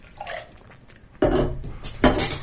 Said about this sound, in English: That bottle we heard there was opened with the decapping catcher. That's the pry-off bottle opener that sticks to your fridge and catches the caps with a crazy strong magnet. It's the monopole magnets.